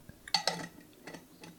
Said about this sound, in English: I think I'm going to stop jangling my tablespoon in my glass jar, if that's okay with you. I don't know if you've had enough of that sound yet.